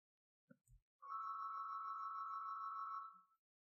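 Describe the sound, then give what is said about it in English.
A grandmother's mobile phone rings with one steady, fairly loud electronic tone held for about two seconds, just after a couple of soft low bumps, with no talking. “That's my granny's phone.”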